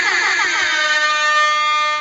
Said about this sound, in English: Yeah, man, let me sound that alarm, man.